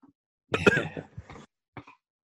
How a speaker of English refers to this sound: Sorry, I was coughing there.